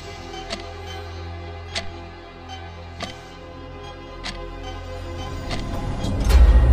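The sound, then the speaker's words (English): A clock ticks slowly and steadily, one sharp click a little over a second apart, over a low rumbling drone that swells louder toward the end. “Doomsday Clock.”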